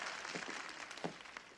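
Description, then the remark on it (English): A crowd applauds steadily, a dense wash of many hands clapping at once, fairly soft and even throughout with no voices over it. “And while you're in the clapping mood, I'd like to give a big round of applause to my band,”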